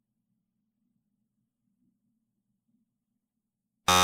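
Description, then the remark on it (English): Near silence with a faint low hum, then a loud, harsh quiz game buzzer blares suddenly at the very end, a rich harmonic electronic tone that is cut off quickly. “I can't buzz in.”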